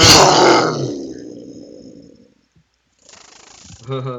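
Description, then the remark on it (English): A loud, aggressive roar bursts out and fades away over about two seconds, followed by a brief silence and then a short stretch of rough, breathy sound with a voice. “Yes, you guys might have noticed the roars are getting more aggressive lately.”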